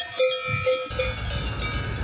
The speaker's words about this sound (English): Yes, indeed. It was a lovely little cow up there with the Swiss bells on, even though we were, of course, close to the Swiss border, but actually in France.